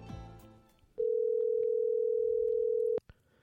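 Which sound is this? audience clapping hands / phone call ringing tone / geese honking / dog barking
phone call ringing tone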